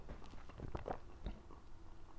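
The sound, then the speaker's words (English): Quiet sipping of a pumpkin-spice beer, with a few soft wet mouth sounds and a brief gulp over a faint background hum; no one speaks. “I'm going to sip an our man's beer here.”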